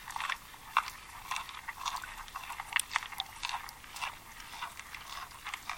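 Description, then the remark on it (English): A manatee chewing plants underwater: a steady run of crisp, crunching clicks and snaps, irregular but continuous over a few seconds, fairly bright against a faint watery background hiss. “Listeners, we're going to listen to a manatee chewing for a few seconds here.”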